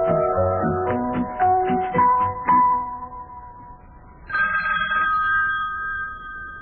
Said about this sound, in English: Well, lad, telephone's ringing again. Well, boy, I'm not going to answer it. No, silly, not me. I know exactly what it is. It's one of the guys in my club calling up to tell me that they're going to resign from the club.